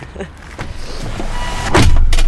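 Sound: getting into a car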